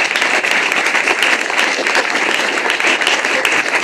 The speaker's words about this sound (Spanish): Fuerte aplauso para nuestros compañeros.